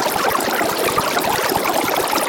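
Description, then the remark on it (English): Recorded audio of a GOP political debate, sped up to an extreme rate without pitch shifting, becomes a dense, continuous babble, rushing and burbling like running water, steady and loud throughout with no distinguishable words or pauses. “It's like no pitch shifting at all. It's just completely sped up.”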